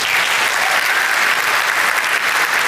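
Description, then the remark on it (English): A church audience at Life Center claps together after the announcement of verse-by-verse preaching through scripture, a steady, dense wash of applause, loud and sustained throughout with no voices standing out. “Oh, you're clapping now.”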